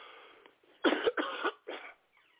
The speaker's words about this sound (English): Excuse me. Sorry about that, everybody. I've been battling something. And got this little cough. I've been fighting last week.